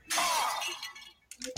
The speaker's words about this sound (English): So you didn't tell me hot chicken noodle soup can break glass.